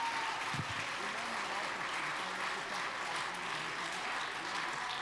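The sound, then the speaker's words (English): An audience claps hands in praise of the Lord in sustained, dense applause for several seconds, a steady wash of many hands at once with faint voices mixed underneath. “Somebody give the Lord a hand clap of praise right now.”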